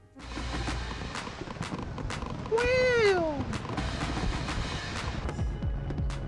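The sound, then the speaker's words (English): Fireworks crack and pop in a steady, irregular series over a constant background rumble, with a brief rising-then-falling whistle partway through. “Or you want me to show you fireworks? Fireworks.”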